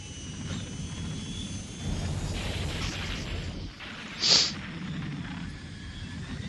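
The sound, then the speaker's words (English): An airplane's jet engine roars steadily throughout, a dense, rumbling drone with a brief sharp hissing burst partway through. No one speaks. “you got this plane. How did you know this engine was going out?”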